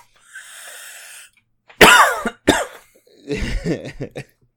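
A man coughs heavily in a few harsh, explosive bursts, preceded by a raspy wheezing inhale and followed by a rough, sputtering cough close to the microphone.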